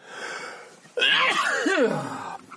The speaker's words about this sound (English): I do move away from the mic, so you're not catching those sneezes full on, all right? Just so you know.